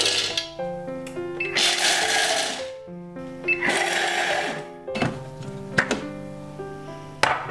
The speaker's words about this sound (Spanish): Triturar las almendras.